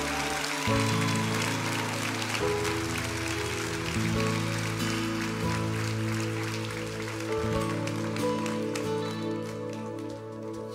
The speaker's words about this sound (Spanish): Quiero invitar a la pastora de niños de esta casa. ¿Y por qué no la reciben con un fuerte aplauso a Dios por su vida?